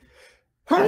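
A single sneeze: a soft, breathy intake, a brief pause, then a sudden loud, voiced burst that cuts off abruptly.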